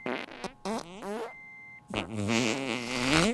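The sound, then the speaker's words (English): A doctor at a medical center farts loudly: a few short sputtering blasts with rising and falling pitch, a brief pause, then one long, wavering, buzzy fart that grows louder toward the end. “That same day, at the medical center, a doctor farted.”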